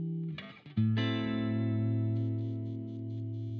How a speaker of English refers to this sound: We're using a preset called Deluxe Crunch, but with a gain dialed down a little bit.